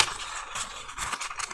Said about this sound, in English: So I will take the other piece of paper, the other half of the paper. Fold that little thing down.